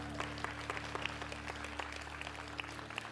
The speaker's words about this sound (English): Hallelujah. You can give God a hand clap. That's fine.